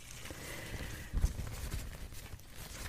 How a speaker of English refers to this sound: Be interested in exploring more of paper sounds. I love this little floaty sound.